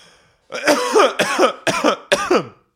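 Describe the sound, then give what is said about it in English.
Four harsh, raspy coughs come in quick succession, loud, with a throaty, clearing quality to each burst and no talking around them; a fake cough that turns into a real cough. “That was a fake cough that turned into a real cough.”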